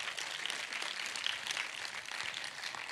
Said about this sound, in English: Come on, clap your hands one more time to the Lord.